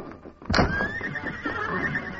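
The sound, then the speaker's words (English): A horse in a stable lets out a single long, loud whinny, its shrill, wavering cry carrying on for nearly two seconds after a sharp start, with no one talking. “The Lone Ranger and Banner hurried to the prison office, got their guns, then rushed out the back door to the stable where their horses were waiting.”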